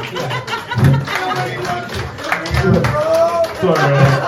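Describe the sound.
A live audience claps and cheers, with several voices yelling and shouting over a steady, noisy wash of applause that swells in bursts throughout.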